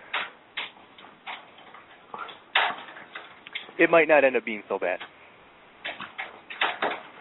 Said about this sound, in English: But it is it hailing there now? Is someone doing laundry? That's the rain hitting the air conditioner in my window.